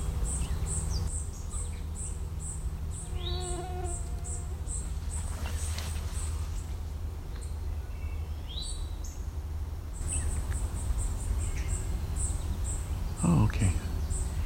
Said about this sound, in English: It's an eastern towhee calling and something very angry. I don't know what. It's small.